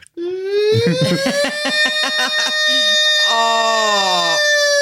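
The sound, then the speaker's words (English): A voice imitates an air horn: a loud, sustained blaring tone that slides upward in pitch, breaks into wobbling, stuttering bursts in the middle, then ends with a second long held blast. “Can I get an air horn?”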